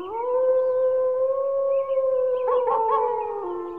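A wolf lets out a long, steady, mournful howl that holds its pitch, then wavers and breaks near the end as another howling voice seems to join. Fairly loud, with no talking.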